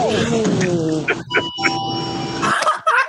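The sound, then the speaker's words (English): A door chime rings out with clear, sustained bell-like tones that hang in the air for a couple of seconds, followed by a brief burst of noise near the end. “I love the door chime.”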